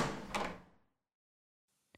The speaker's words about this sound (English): Chag slowly opens the door to Meredith's office.